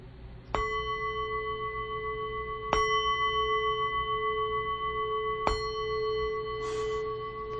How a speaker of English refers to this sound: I'll ring the bell three times. Just follow along with me, I'll talk us through it.